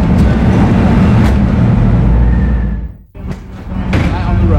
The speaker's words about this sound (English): Inspection and testing, the car is driven onto a rolling road, a room which enables the car to be driven in the static mode.